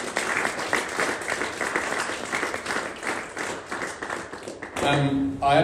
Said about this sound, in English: But don't do this often, but give him a clap. The guy deserves a clap.